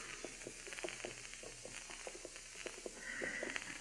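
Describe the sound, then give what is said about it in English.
Horses are walked slowly into a yard by a corral, their hooves landing in soft, uneven thuds and clops. The sound stays quiet throughout, and nobody speaks. “They're walking the horses into the yard. Slow and quiet.”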